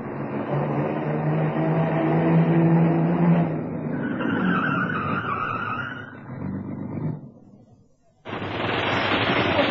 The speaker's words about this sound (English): Just then, as I had arranged, a fat black saloon turned in from the 4th Street at Main and stopped outside the Harleen Gallery.